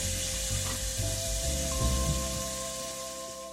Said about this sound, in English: I've got it on medium heat. So what I like to do is I like to kind of get the fat melting and then lower the heat so that the bacon can eventually start browning and crisping. This is gonna take probably, I would say 10 minutes.